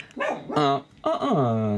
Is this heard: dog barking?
yes